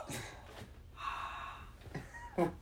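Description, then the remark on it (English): A voice imitates heavy mechanical ventilator breathing: a few short, breathy gasps around one long, hissing drawn-out breath with a faint tonal edge, no words spoken. “Yeah, you just sound like you're breathing heavy.”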